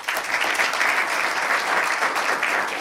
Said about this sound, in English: They are, I'll give them a round of applause.